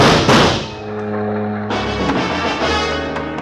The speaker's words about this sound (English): What spoke loud enough for me to hear was a gun.